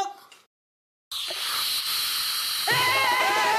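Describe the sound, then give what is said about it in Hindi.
A home pressure cooker whistle blasts out while dal and rice cook on the gas: a loud continuous hiss of escaping steam that rises into a shrill, wavering tone, following a brief moment of silence. “मेरे बाबूजी, सिटी हमारे घर के कुकर में समझ रही है, वो दाल चावल रखा है ना।”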